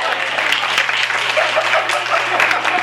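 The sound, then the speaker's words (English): An audience applauds steadily, a dense wash of many hands clapping at a fairly loud, even level throughout with no pauses, no talking audible over it. “I don't require applause before babbling, but thank you.”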